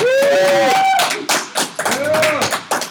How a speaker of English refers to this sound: The roar of clapping. That applause was very... underwhelming.